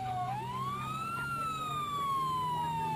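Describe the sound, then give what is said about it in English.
A fire truck siren wails loudly as the truck pulls up about 100 yards away in a small suburb just outside a downtown area, one slow tone climbing and then gradually sliding back down, over a steady low engine rumble, with no voices. “Yes, it looks like a fire truck has just pulled up some 100 yards or so from our position.”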